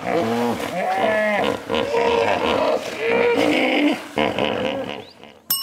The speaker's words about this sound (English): Hippopotamus. Yeah, that's a hippopotamus.